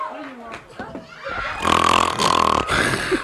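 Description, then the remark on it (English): A voice imitates loud, exaggerated snoring, with raspy rattling inhales that swell and rumble, about two long snore breaths in a row. “You see, when we hit them, they snore.”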